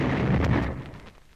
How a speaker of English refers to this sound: Especially with that door burst open. But the explosion will certainly attract attention, so let's be on our way.